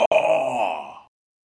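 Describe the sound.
A person voices a drawn-out, wailing roar lasting about a second, imitating a creature screaming directly in someone's face. It is loud and rough with a strong harmonic buzz, trailing off abruptly into silence. No other talk is heard.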